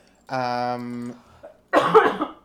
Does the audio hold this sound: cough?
yes